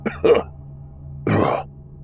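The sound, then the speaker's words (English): A man coughs twice, two short, rough bursts about a second apart, fairly loud over a low background hum, with no talking. “coughs.”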